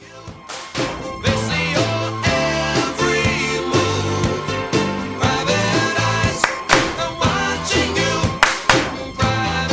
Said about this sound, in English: I'm going to call you on some shit right now. I missed a clap. Yes, you did. No. You did two claps both times.